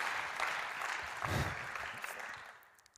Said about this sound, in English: Can we just give a round of applause of encouragement? Thank you. Thank you.